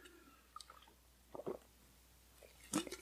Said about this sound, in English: Man, I'm just going to keep drinking this delicious lychee fizzy.